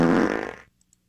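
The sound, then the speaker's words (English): A single loud, rumbling fart lasting about half a second, dry, trailing off into silence with a couple of faint ticks afterward, let out while bending over to pick up a pencil during a first-grade test. “I bent over to pick that up and I farted.”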